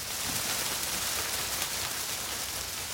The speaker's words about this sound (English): I love to hear the wind rustling in the leaves.